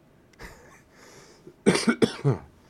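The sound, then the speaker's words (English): A loud burst of coughing, three or four harsh coughs in quick succession after a short quieter stretch of breathing and throat noise. “I've always got a cough when I go on stream.”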